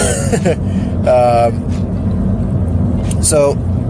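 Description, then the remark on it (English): Three short, voiced sneezes burst out one after another at uneven intervals, each with a sharp rising-falling tone, over a steady low engine rumble. “No, it's a sneeze fest.”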